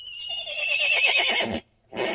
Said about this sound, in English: So let's hear how different these noises are. And here's a horse.